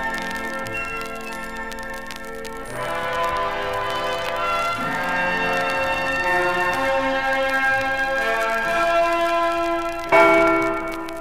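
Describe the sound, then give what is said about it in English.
The Liberty Bell of Philadelphia tolls several times, each heavy strike blooming into a long, shimmering hum of overtones that lingers and overlaps. It rings loud, with no voices. “never knowing that the voice of their god of the mountain, silent for over 2,000 years, was in fact the voice of the Liberty Bell of ancient Philadelphia.”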